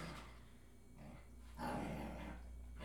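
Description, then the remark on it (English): A male puppy growls in a low, rumbling stretch that swells louder in the latter half, with no talking over it. “He disagrees. Our puppy disagrees.”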